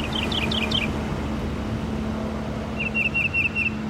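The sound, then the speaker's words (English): A mockingbird sings two different phrases mostly mimicked from other birds: a quick run of about four high, descending chirps, then after a pause a rapid, even trill, all over a steady low background rumble. “a typical male can sing up to 400 different songs. Most, if not all of them, are stolen from other species”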